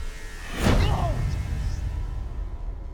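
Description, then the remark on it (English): A single sharp whoosh of a swung punch in a wrestling video sweeps past, followed by a low rumbling thud and a lingering noisy tail. “Mystical punches.”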